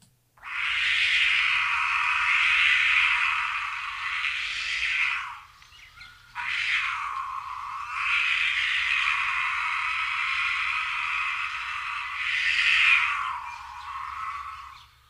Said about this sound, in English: Low growl and scream. I think this is the female in heat, mountain lion.